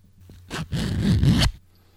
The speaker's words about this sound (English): Oh, in that case, yes, I will. I will zip up my pants.